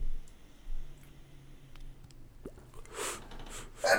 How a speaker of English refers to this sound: Yo, was it just made me laugh so hard I had to sneeze.